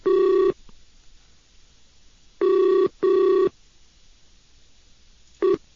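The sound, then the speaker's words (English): A Skype call's ringback tone purrs in steady electronic bursts: one short ring, a pause, then a quick double ring, with another starting at the end, while the person being called does not answer. Clear and fairly loud, no voices. “Hey, guys, he's refusing to answer the phone.”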